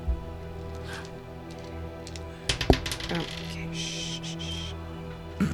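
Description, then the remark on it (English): A twenty-sided die (d20) clatters across a hard tabletop in a quick burst of sharp clicks and rattles, settling after about half a second over a low background hum, landing on a one. “I found another d20, everyone.”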